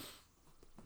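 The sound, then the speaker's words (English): A quick, faint nasal sniff and snort, like someone trying to clear a stuffy nose, with a couple of short breathy bursts near the end and no talking. “Oh, that didn't blow my nose.”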